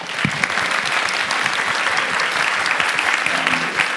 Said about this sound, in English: The other thing I'll say before we do the last question is, as I really, truly want to thank everyone, especially the JCC, if we can give them a really quick round of applause.